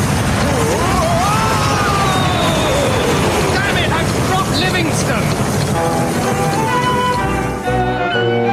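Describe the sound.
A boat engine, fuelled with coconut booze, roars loudly and steadily at high speed, with voices shouting over the din before brighter tonal sounds cut in near the end.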